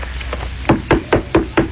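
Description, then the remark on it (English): Several dull, hollow thumps on the first copy of a newly arrived hardcover book, about five evenly spaced knocks after a couple of softer taps, each a short woody thud with no talking. “You're listening to me thumping on the absolute first copy of my new book, which has just arrived this afternoon, and I'm in a total state of euphoria.”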